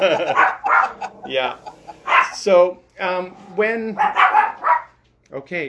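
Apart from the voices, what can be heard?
puppies barking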